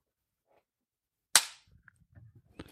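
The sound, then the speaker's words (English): A single sharp, loud hand clap, made while a camera is rolling, rings out briefly from near silence, followed by faint low rustling and a softer knock at the end. “Just clap in case.”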